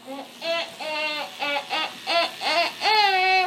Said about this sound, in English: who's brushing his teeth and talking with his toothbrush in his mouth.